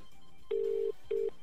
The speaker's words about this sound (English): So we're just dialing the number, see if anything's going to happen. And here it goes. Turn the music down a little bit. We're ringing reception. Of course, no one's home.